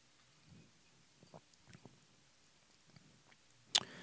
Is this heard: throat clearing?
no